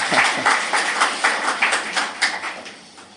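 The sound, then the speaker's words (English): A round of applause from an audience at an evening talk and panel on virtual and augmented reality, a steady patter of many hands clapping at once, fairly loud and even, fading slightly toward the end with no voices over it. “Yep, round of applause.”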